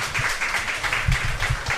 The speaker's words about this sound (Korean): 박수 한번 네. 부탁을 드리겠습니다. 감사합니다.